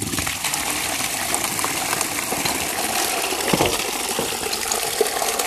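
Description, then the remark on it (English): Water splashes and gushes steadily out of a bucket, spilling over a person, a continuous wash of sloshing with a few sharper spills near the end, no voices. “Oh, I've just got water all over me.”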